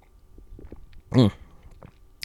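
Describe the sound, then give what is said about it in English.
Quiet mouth noises, then one short, louder slurp of Folgers coffee being sipped, followed by faint swallowing and small clicks; no one speaks. “Maybe I need some more coffee. Let me take a sip real quick.”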